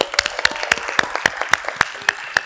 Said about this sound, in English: Everybody give them a round of applause for that.